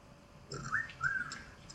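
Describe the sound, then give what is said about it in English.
Two short whistle blasts, the first rising and the second steadier, sounding at moderate volume over a faint background with no one talking. “I know we got this supposed to be a whistle.”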